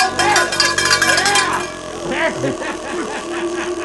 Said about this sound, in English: ringing with the mini cowbells.